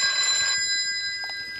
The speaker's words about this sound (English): Well, why do you think I'm reacting this way? I've only heard that phone of yours in the office ring in my entire life.